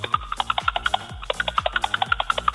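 Tinny customer service telephone hold music: a fast, steady clacking percussion like wooden spoons over a thin looping melody and a stepping bass line, repeating a short phrase with a washy, reverberant tail.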